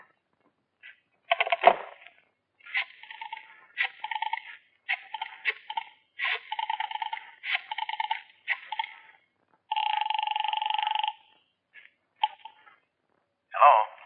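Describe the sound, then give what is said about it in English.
A telephone being dialed: a quick series of short electronic beeps in uneven rhythm, followed by a longer steady tone and a couple of final brief beeps. “Can I use your phone? Yeah, help yourself.”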